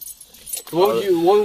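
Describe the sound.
A quick, bright jingle of keys on a keyring with a new attachment, fairly soft, lasting under a second before a man's voice starts speaking over the end.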